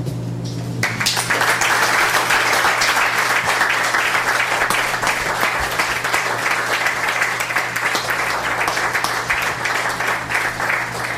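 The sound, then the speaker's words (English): Sustained audience applause for readers at an open mic reading at the Elm Cafe erupts after a brief pause and continues steadily at full volume, a dense wash of many hands clapping with no voices standing out. “Let's give another hand.”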